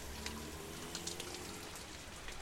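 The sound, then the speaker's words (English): Steady rain pours down at night onto a street outside a small hardware store named Morrison's in Belfast, Northern Ireland, in 1914: a continuous hiss with scattered brighter drop patters and a low rumbling undertone. No voices, just the constant wash of rainfall. “It's nighttime and you're standing on the street in the rain outside a small hardware store named Morrison's.”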